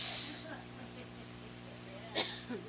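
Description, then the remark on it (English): A voice imitates a snake's hiss: one short, loud, sharp sss that fades within half a second, followed by near quiet with a brief faint breathy sound later. “I expect to hear a thump as it hit the ground, not a sss.”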